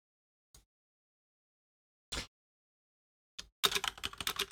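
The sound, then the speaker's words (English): Typing on a computer keyboard: a few isolated key clicks spaced out with silence, then a quick, busy run of clattering keystrokes to the end. No one speaks. “I'm typing in to make sure I got it right.”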